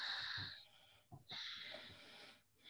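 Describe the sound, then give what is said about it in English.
Slow, audible yogic breaths with a soft, hissing throat constriction, an inhale drawn out then a long exhale, fairly quiet, with no talking; the navel is drawn toward the spine while breathing into a wide, broad chest. “Doesn't matter what outer flesh does, but you're drawing it in and you're breathing into a wide, broad chest. And there's a slight sound you make.”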